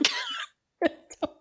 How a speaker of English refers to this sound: I really have no idea what you would do with sand in your lungs. I'll cough it out. Don't worry. I'll be fine.